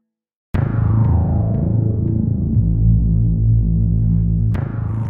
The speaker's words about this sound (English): Why is there so much interference?